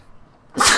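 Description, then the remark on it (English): A single short, sharp sneeze bursts out after a brief quiet lead-in, loud, with a breathy noisy burst that cuts off quickly. “you know, gesundheit.”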